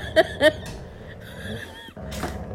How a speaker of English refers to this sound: Both of them are growling and playing with a tug toy. So, they are pretty active.